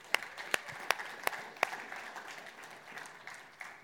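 A church audience claps its hands for Jesus Christ, a few sharp claps standing out in a steady rhythm over the first half before the applause settles into a softer, scattered patter.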